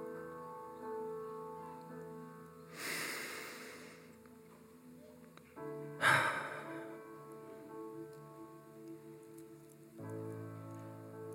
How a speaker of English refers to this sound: You know what's funny about the sound of breathing? If you try to spell the sound of breathing, it might sound a little bit something like,